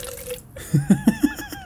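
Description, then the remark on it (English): Captain Morgan rum glugs out of a bottle into a cup in a hotel room in about five quick, rhythmic gulps, fairly clear, with no one talking over it. “So if you listen carefully, I'm going to pour some Captain.”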